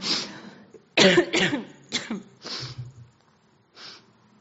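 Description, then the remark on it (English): A run of harsh coughs comes in quick bursts, several in a row, followed by a pause and one last softer cough, with no talking. “Sorry, guys, I'm just going to do a bit more coughing. Please ignore it.”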